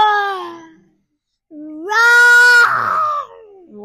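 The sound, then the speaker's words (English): Children imitate a lion's roar, practicing the sound a lion makes for a read-along book: a falling, high-pitched cry, a pause, then a loud rising roar held for about a second before breaking into rough, strained shouting that fades out. “Shall we practice a sound a lion makes? Now on the book it says roar very loud.”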